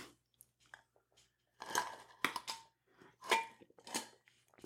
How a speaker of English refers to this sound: Pardon me for a moment while I, take a sip of my preferred beverage.